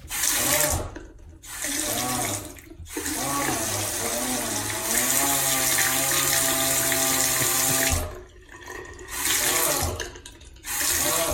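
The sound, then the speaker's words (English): A running hot water faucet with a loud, wavering, voice-like moan from something in the pipes, sounding like a man, droning in rising and falling pitches over the rush of water, broken by a few brief pauses. “A faucet that sounds like a moaning man.”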